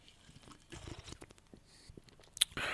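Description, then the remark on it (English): Someone quietly sips coffee: a few soft slurps and small wet mouth clicks, a brief bright clink near the end, then a short breathy rush of air. “Let me take a quick sip of my coffee.”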